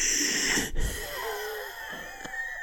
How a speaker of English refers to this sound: And she heard a weird wet breathing sound, like when someone has a stuffy throat and kind of wheezes while breathing.